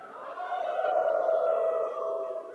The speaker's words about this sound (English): Go ahead, let's get the howling going on real quick. One, two, three.